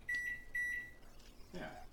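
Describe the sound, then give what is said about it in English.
Two short electronic beeps from a kitchen timer being set for 20 minutes, evenly spaced, followed by faint handling noise and a soft voice in the background. “I don't know how to set a timer on my microwave. Oh, kitchen timer. There we go.”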